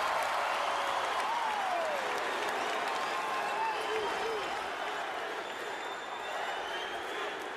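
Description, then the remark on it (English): A loud basketball arena crowd chants "MVP" for Dwyane Wade of the Heat as he shoots free throws late in the game, in a dense, steady roar that stays strong for several seconds, with no single voice standing out. “Crowd chanting MVP one more time for this guy.”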